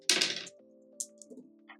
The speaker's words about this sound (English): I think Danny, you're just rolling with the 2 dice